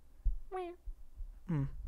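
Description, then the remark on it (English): A person imitates a cat with two short, nasal meows, the first rising and falling around 0.5 seconds, the second lower and drawn out near the end, with soft thumps between. “Do your best cat meow.”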